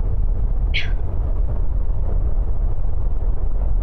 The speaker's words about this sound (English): The storm's hit, and I think we're going through the worst of it. The howling outside. It almost sounds like some sort of animal.